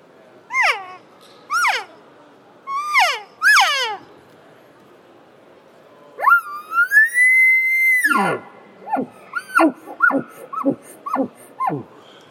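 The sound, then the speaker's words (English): Soft elk cow calls blown on an OTC game call: four short, descending mews, then a long drawn-out whine falling at the end, followed by a quick run of chirpy mews, clear with no talking. “Like our OTC here, I'll blow a little bit. It's going to be a real soft cow call.”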